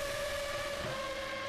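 A high-pitched Formula 1 race car engine screams steadily at full throttle, loud, its shrill whine holding an even pitch with no voices, as the car rounds Portier and floors it to blast through the tunnel.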